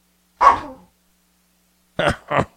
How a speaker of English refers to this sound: I got two dogs rummaging a bag that has no food in it right now.